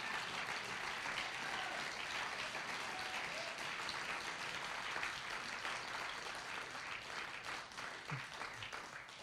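Sustained audience applause, a dense, steady wash of many hands clapping at a loud, even level for the whole stretch, fading slightly toward the end, with no voices standing out.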